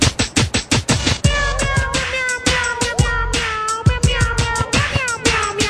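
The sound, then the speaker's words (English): Rap Cat, a cat in a drive-thru restaurant advertisement, meows in long, wavering cries layered over a steady, punchy beat, the music loud throughout with no talking. “Granted, their offer may seem the same, but ours comes with Rap Cat.”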